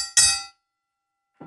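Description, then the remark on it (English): A single bright, metallic bell ding from the show's "Kenny Bell", like an old boxing bell, rings out with shimmering overtones and fades within half a second, followed later by a faint, softer tap. “Something like the old boxing bells, too.”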